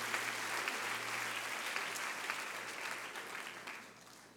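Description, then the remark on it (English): A crowd of people clapping their hands to the Lord before being seated, a dense wash of overlapping claps that holds for several seconds and eases off slightly toward the end, with no voices over it. “Would you clap your hands to the Lord before you're seated?”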